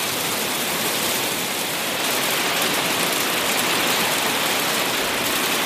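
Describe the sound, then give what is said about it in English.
Heavy hail pelts down on Anchor Island in Fiordland in a dense, unbroken roar, a constant loud hiss of countless tiny impacts on a hard surface, with no voices and no break for several seconds. “So I'm on Anchor Island in Fiordland and it is hailing like nothing else, but luckily we hadn't left the hut yet.”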